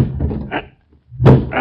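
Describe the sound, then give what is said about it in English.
Two heavy, booming thuds against an apartment door, spaced about a second apart with a short silence between them, loud as the door is rammed to break it down. “Come on, we'll break it down.”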